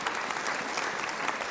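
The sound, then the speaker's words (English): An audience applauds steadily at a morning service, a dense wash of many hands clapping at once, fairly loud and sustained throughout without any voices standing out. “Is that worth a hand clap this morning?”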